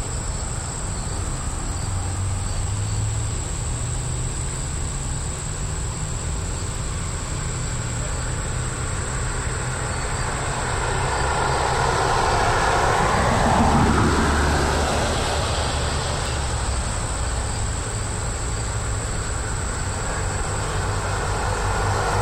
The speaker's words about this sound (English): There's definitely a end of summer vibe to the streets. It almost feels like everyone's died. Except for the insane constant noise of cars going back and forth.